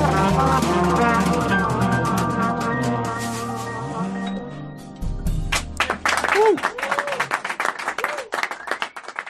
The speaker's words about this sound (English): Good to hear some clapping there.